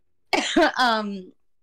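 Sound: cough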